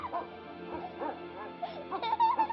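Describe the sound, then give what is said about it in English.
A rescue dog named Molly lets out a string of short, high yips and whimpering barks, fairly loud, the calls growing sharper and more excited toward the end. “their 2-year-old son, Alex, and their rescue dog”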